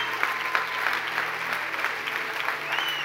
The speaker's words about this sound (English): Can we all stand to our feet? Give these guys a round of applause for sharing their hearts.